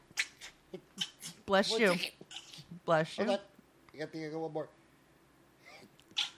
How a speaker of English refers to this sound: Hold on, I got to sneeze.